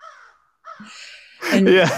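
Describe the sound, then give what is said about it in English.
A crow caws, first faint a couple of times, then a loud, harsh, raspy caw at the end; the crow sound is a sound effect. “Oh, is that a real crow behind you?”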